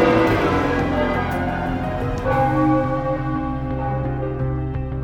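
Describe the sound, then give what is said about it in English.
The bells of Rome's churches peal together in the evening as a helicopter lifts off carrying the departing pope, a loud, continuous wash of overlapping metallic tones, with repeated strikes keeping the ringing full as deep hums linger underneath. No voices are heard. “And then, as the chopper lifted into the evening sky, the bells of Rome rang out.”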